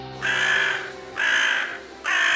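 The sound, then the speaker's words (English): A crow caws three times in a steady rhythm, each call a loud, harsh, drawn-out rasp, with no one talking. “That's more like dinner, as in crow.”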